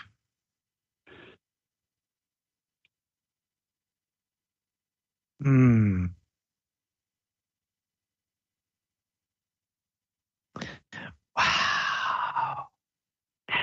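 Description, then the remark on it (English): Long quiet gaps broken by a few deep breaths: a faint breath early on, then a loud voiced exhale like a sigh, and later a cluster of airy inhales and exhales. “Breathe out. Breathe in. Breathe out.”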